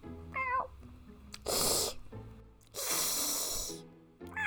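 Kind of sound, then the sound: vocal imitation, person imitating a cat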